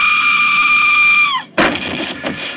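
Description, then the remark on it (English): A terrified student's steady, piercing wail bends downward and cuts off as she faints, followed at once by a loud, heavy thud as she bangs her head, with a rough, rumbling tail and a smaller knock shortly after. “The terrified Natalie has fainted and banged her head.”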